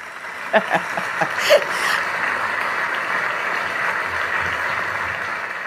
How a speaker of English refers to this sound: That was perfect. I just have to add some applause.